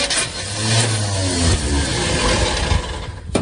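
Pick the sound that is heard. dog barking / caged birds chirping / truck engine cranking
truck engine cranking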